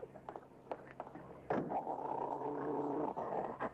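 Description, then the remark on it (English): After a quiet start, loud, rough snarling erupts and holds steady for about two seconds, aggressive, as a big police dog and another dog growl and snarl at each other, with a brief dip near the end. “Oh, I guess the big police dog over there don't like your dog.”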